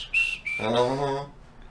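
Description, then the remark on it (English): A person whistles a short, clear two-note tone, then a sustained hummed or sung vocal note follows and fades out. Fairly loud, with no other sounds. “A little bit of a whistle at the end of the thing she says.”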